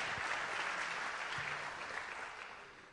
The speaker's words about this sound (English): Amen. Can we give the Lord another hand clap of praise this morning?